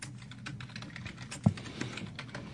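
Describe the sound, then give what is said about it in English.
Slow, uneven typing on a computer keyboard, a scattering of soft clicks with one sharper, louder keystroke near the middle, with no talking. “We got some slow typing going on.”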